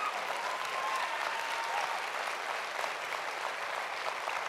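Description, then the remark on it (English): A church audience claps steadily throughout during a sermon, a dense, even wash of many hands applauding at a sustained moderate level, with no voices standing out. “You should be clapping better than that.”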